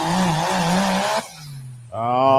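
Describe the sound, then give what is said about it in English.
A farm truck engine revs loudly, drops abruptly to a lower idle-like drone, then surges back up into a strong, rising rev. “farm truck leading us off here.”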